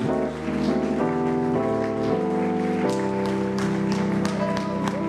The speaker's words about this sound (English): Let's everyone clap our hands to the Lord.